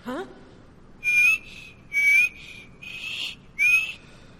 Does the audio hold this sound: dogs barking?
no